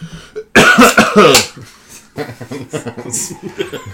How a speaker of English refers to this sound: It's the most deliberate cough in history. although I know you just needed a cough.